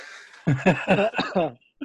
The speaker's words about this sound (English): And you're dry coughing on camera.